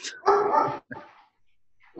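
A dog barks sharply a couple of times, with a loud first bark followed by a shorter, softer one and a brief yip at the end.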